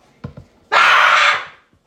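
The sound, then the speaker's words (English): A child lets out one loud, harsh, high-pitched scream lasting just under a second, after a couple of soft thumps, then it cuts off into quiet. “Stop screaming, please.”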